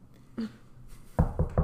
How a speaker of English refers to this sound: Oh, gotta go. I was just gonna say, before I leave, because someone's knocking at the door